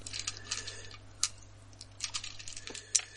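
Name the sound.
dice being rolled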